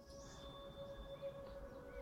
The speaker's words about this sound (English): Sorry, it's a little too loud on the wind there.